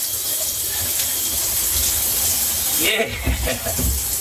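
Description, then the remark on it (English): A steady, loud hiss of shower water spraying against the back shower wall, soaking it, runs unbroken throughout, with a brief muffled voice or movement breaking in near the end. “We got the back shower wall all soaked up.”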